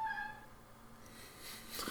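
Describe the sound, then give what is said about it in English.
A pet cat yowls in a drawn-out, wavering cry that fades, followed by softer background noise and faint rustling, fairly quiet. “My cat's yelling in the background.”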